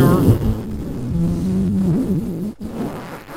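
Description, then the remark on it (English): A long, loud, buzzy fart sound, made by a voice blowing a raspberry, sputters and wobbles in pitch for about three seconds with a brief break near the end. “Fart.”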